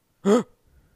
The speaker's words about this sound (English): Were you breathing? That was a gasp. I was trying to act shocked.